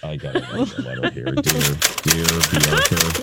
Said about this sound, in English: I got to get my typewriter out. Oh, no. Okay, Jessica Fletcher style?